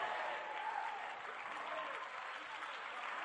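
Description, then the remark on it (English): A church audience applauds steadily for a few seconds during a worship service, dense overlapping claps at an even, moderate loudness with no voices standing out. “Your clapping is sick. Your shouting is low.”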